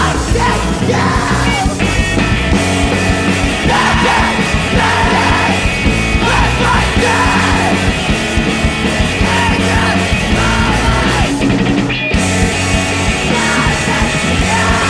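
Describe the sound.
Loud, dense punk rock from the Fort Worth scene with harsh screamed vocals over pounding drums and distorted guitars, running continuously at full intensity with a brief dropout near the end.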